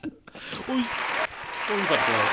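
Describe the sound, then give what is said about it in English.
A sound-effect burst of applause, a dense, steady wash of clapping that starts abruptly and holds for about two seconds, with voices talking over it. “We didn't have the applause. I might have this one.”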